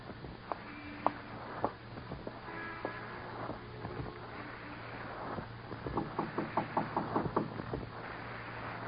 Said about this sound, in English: Go in there and knock on the door.